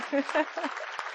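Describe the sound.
A crowd applauds a pastor for a picture, in a steady, dense wash of clapping, with a few voices calling out over it at the start.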